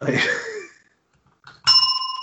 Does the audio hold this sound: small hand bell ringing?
yes